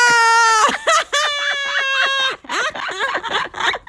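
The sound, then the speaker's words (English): A loud, high-pitched scream rings out, one long sustained shriek followed by a run of shorter, choppy yelps that break and waver. “Anyway, I screamed.”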